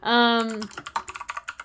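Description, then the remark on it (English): A short sustained droning tone gives way to a quick run of about ten crisp computer keystrokes, moderately loud, tapping in an uneven rhythm. “Is that what you're all typing right. in? You're typing oh, yep.”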